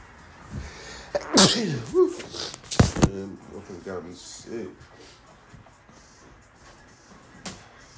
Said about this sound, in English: Damn, I gotta sneeze again. Hold up.